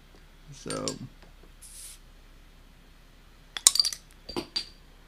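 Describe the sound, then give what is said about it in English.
Glasses clink together in a toast: a bright, ringing tap with a couple of quick follow-up clinks, then another ringing touch a moment later, after a brief voice and a soft hiss earlier. “Cheers, my friend.”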